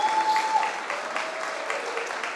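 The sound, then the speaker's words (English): A crowd applauds steadily to welcome guest speaker John McGinley at a morning gathering, a dense, even patter of many hands clapping at moderate loudness, with a faint brief tone near the start and no voices. “Let me invite him up, and I'd love for you to give him a round of applause.”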